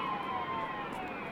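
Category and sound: signal or alarm, emergency vehicle sirens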